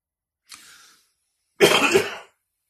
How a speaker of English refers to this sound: Pardon me. I'm in recovery mode. I'm still hacking and coughing a bit.